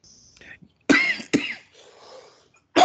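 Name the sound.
sneeze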